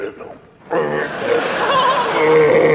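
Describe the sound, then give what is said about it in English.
A voice imitates the swelling, gurgling gullet of a crocodile: after a brief quiet start, a low, throaty, rasping gurgle rises and holds steady and loud for about two seconds, with no words spoken. “Like a cat coughing up a hairball slowed down.”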